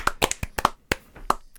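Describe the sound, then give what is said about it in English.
A brief patter of applause: sharp, irregular hand claps, about seven or eight crisp slaps over under two seconds, moderately loud with no voices, given to congratulate someone on a Twitch partnership. “So I think a round of applause for a lot of hard work.”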